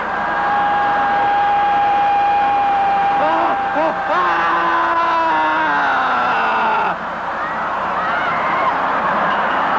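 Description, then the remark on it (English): A crowd of voices screams, wails and howls at once during the screaming phase of dynamic meditation, a loud, unbroken wall of overlapping cries that rise and fall over each other for the full length, with no clear words. “The next phase, the screaming phase of dynamic meditation, feels like when you finally had an opportunity to throw a tantrum when you were a little kid.”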